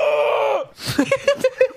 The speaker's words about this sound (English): The look you gave me. You turned away and screamed, and then you looked back at me, and you just had this...